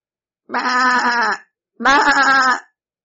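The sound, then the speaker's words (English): A goat bleats twice, two loud, wavering calls of about a second each separated by a short pause, with nothing else in the background. “Besides, I can see that God has blessed my flocks of sheep, goats, and cows since you have been tending them.”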